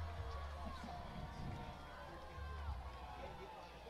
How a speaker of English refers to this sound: The Rebel faithful cheer on the young men.